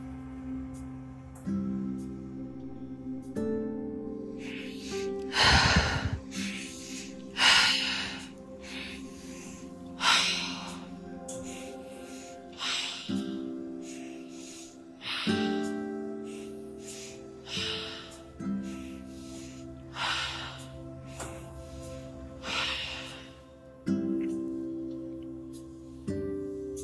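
Forceful, rhythmic breathwork breathing: loud, sharp breaths repeating every couple of seconds, over a sustained, droning musical background.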